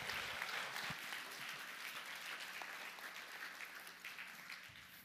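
A crowd claps steadily for several seconds, a dense wash of many hands that stays fairly even, fading slightly toward the end.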